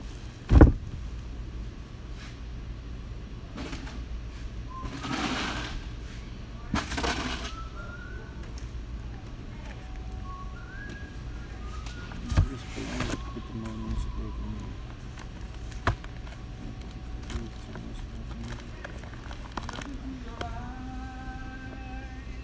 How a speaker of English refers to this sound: Okay. I think I'll open that window.